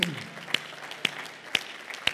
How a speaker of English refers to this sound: Let's give the Lord a hand clap right now.